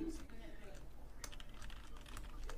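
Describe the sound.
Rapid clicking of keys on a computer keyboard as someone types a name for an on-screen banner, a quick irregular run of light taps over a low background hum, with brief murmurs of voice behind it.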